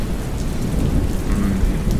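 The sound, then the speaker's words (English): Steady heavy rain pours down with a deep, rumbling roll of thunder underneath, a continuous storm wash filling the whole stretch with no voices. “Thunder sounds.”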